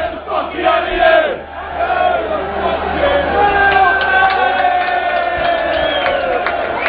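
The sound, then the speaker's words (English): A large crowd of Crusaders and Wolves football fans in a stadium chants loudly and continuously, many voices blending into sustained, sung tones with rising and falling phrases over a steady roar. “A little bit of banter going around here between Crusaders and Wolves fans.”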